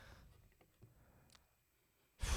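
Mostly quiet with a few faint clicks, then a sudden loud, breathy rush of air blasts right against the microphone at the very end, like a heavy exhale.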